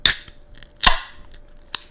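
A beer can is cracked open: a few sharp metallic clicks, the loudest followed by a brief fizzing hiss that fades quickly, with no voices.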